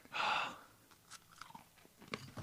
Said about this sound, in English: This is what people hate on the show, chewing. I did it right in the microphone, too.